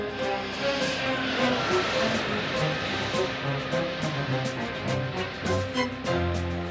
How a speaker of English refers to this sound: Also, crazy thing, listening to your headphones, it's mixed. Oh, yeah, it's stereo mixed. Panning left and right. Listen, everyone, to this plane that flies by right here.